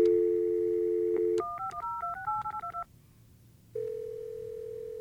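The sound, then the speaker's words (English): A steady dial tone hums, then a quick run of about eight touch-tone beeps is punched in to call the next person on a list, followed by a pause and a steady ringback-like tone. No voices, clear. “Call the next person on the list.”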